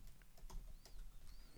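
Quick, irregular clicks of typing on a computer keyboard, a string of light taps with a few sharper keystrokes, over a low hum with a faint high whistle drifting through.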